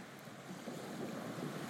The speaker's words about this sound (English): The weather is cool, but not too cold. And there is a steady headwind on the bow of the boat as it skims across the sea.